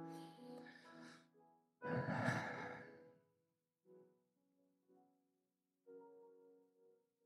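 A deep, breathy rush of air swells loudly for about a second as a group of people with heads bowed take a deep breath in and out together before praying, framed by softer murmuring tones before and after.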